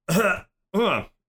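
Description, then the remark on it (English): Two loud, throaty coughs in quick succession with a short pause between them, voiced and rough like someone hacking to clear their throat, made by a person coughing and hunching over. “I start, like, coughing and just, like, hunching over for a second.”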